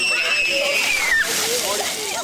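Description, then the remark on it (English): Water sprays and splashes in a steady, hissing wash at the splash pad in Palmer Park, with children's shouts and chatter mixed in and a high, sliding squeal near the start. “Another thing they'll see just a stone's throw from the urban garden is Palmer Park's splash pad, a summertime favorite with kids.”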